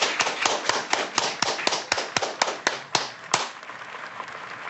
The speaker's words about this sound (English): Let's congratulate the new center, huh? Everybody together. Clap hand.